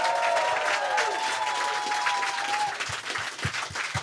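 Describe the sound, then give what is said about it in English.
A live audience at Zany's bursts into a full round of applause for the staff, dense steady clapping with some whoops and cheers, the crowd noise sustained throughout before individual claps stand out as it thins at the end. “They've been great tonight. Give them a round of applause.”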